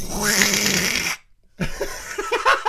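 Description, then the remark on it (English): A voice imitates a fart with one long, loud, raspy buzzing blurt, then a short silence, followed by a few quick, breathy vocal bursts like stifled laughter. “But, you know, it was one of these farts that was like this...”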